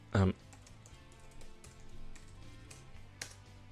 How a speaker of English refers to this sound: I'm sorry, let me just tippy tappy on my keyboard.